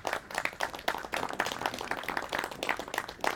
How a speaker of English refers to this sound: We have a round of applause for everyone that's read. Thank you.